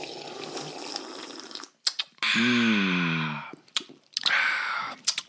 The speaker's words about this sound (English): Deserves a sip of my French martini, which my husband just made for me. Let's sip that. Mouth noises, ready?